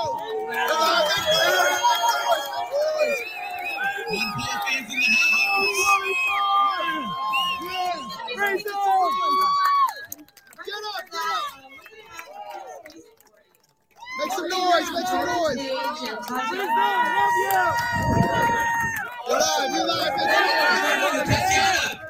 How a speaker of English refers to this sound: It's like, oh, okay, here was Max Blumenthal took a good video of this. So let's just give you guys a little taste of how the event turned out, or at least how the crowd was.